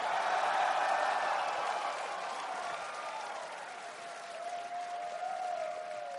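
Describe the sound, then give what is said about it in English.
A room full of people claps steadily for several seconds, an audience voting by applause, a dense, even wash of applause with a faint murmur of crowd noise underneath. “Since there's no way shouting is going to work, let's show a show of hands or applause.”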